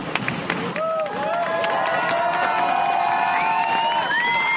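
A large theater audience of Spider-Man Turn Off the Dark applauds and cheers steadily for a 31-year-old Spider-Man stunt double as paramedics load him into an ambulance, the dense clapping blending with sustained shouts and rising whoops that swell and hold for several seconds.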